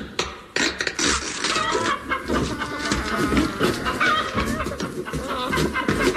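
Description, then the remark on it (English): Several people disguised as chickens, opening crates at an oasis, imitate chickens, clucking and squawking together in a busy, continuous chorus that stays loud throughout, with no clear speech. “Yes, immediately on arrival at the Oasis, we began to open the crates, having first disguised ourselves as chickens.”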